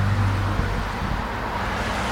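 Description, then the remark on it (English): A Mercedes car rumbles past at the roadside, its low engine drone strongest at first and then fading into a steady wash of road and wind noise, with no voices. “Get back up and get your thumb out. Mercedes.”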